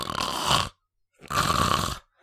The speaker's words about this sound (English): Yeah, it was, that was, talk about sound editing. That was loud. Bananas. That was some loud snoring.